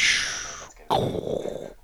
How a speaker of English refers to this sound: All right, cue lightning round sound effect.